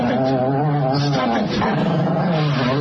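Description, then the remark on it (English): A dog named Sadie growls steadily and low, breaking into whiny, high whimpers, loud, with no talking over it. “Type of Cherokee and his dog, Sadie.”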